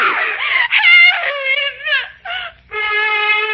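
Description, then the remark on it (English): A woman screams loudly, several long, high-pitched cries broken by short gasping pauses, sounding frantic and distressed, as she struggles and a hand closes over her mouth to shut off her screams. “The girl resisted me, and even as my hand closed over her mouth to shut off her screams, I saw something glinting in the darkness.”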